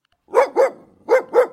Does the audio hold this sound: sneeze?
no